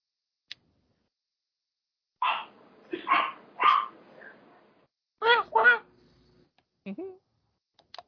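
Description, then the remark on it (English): A little dog in a window barks in two quick clusters, three sharp yaps followed by a pair, with a few fainter short sounds afterward. The barks are moderately loud against a quiet background. “There's a little doggy in the window.”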